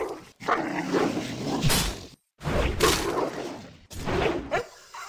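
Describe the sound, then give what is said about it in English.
Three separate bursts of pained canine yelping and whimpering, each lasting over a second with brief silent gaps between, from a wolf being killed in a video game played on a computer. “I took to muting my computer when I'd kill a wolf because I worried the sound might upset my real-life dogs.”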